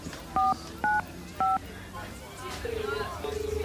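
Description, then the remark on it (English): Three short telephone keypad dialing tones beep at a steady pace from a phone booth, followed by two longer, lower tones like a line ringing, over faint background murmur. “I'll call mother from the phone booth outside.”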